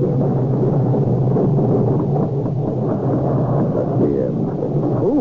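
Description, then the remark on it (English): A loud, sustained thunderstorm on the moors at night, with rumbling thunder rolling beneath steady rain and gusting wind, continuous with no voices present. “And then the storm.”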